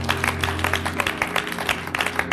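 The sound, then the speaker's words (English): An audience claps their hands for God during a sermon in a dense, steady burst of applause, many hands striking at once with a lively, sustained sound and a low hum lingering beneath. “Clap your hands for God.”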